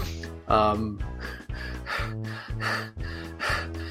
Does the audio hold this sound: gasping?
yes